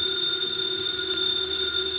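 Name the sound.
house telephone ringing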